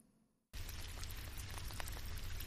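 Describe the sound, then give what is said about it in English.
After a brief hush, a steady wash of rain-like patter cuts in abruptly, dense, with many tiny droplet ticks over a deep rumbling undertone and no voices. “Sounds like rain.”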